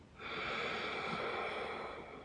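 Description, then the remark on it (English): A long, steady sniffing inhale through the nose, fairly loud, drawn in for about two seconds with a breathy hiss and no talking, taken during a breathing exercise while flaring the arms out to the sides. “Sniff in the air.”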